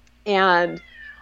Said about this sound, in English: here's my cat. Hello, kitty.